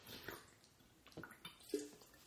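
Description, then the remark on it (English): Someone takes a quick sip of water: a few soft, wet slurping sounds and a small gulp, quiet and brief, with no talking. “All right, taking a quick sip of water.”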